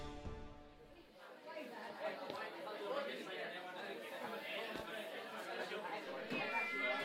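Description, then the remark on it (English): A dense crowd of revelers fills a great hall with steady, overlapping chatter, a warm wash of many voices with occasional sharp clatters and brief bright clinks throughout, starting after a low tonal note. It is a BattleBards sound effect. “The ruckus of so many people crowded into this great hall, as large as it is making your head ring, and so you retreat a little”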